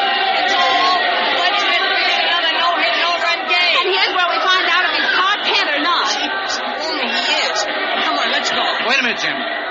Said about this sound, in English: By the time we get through this crowd and around to the clubhouse, he ought to be ready.